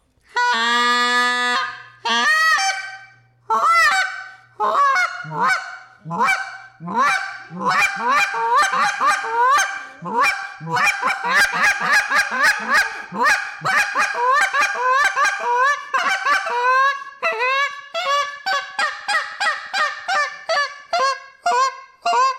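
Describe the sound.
Loud Canada goose calling in a rough, clear, cluck pattern: a long run of harsh honks breaking into quick, clipped clucks, repeated rapidly and steadily with no talking over them.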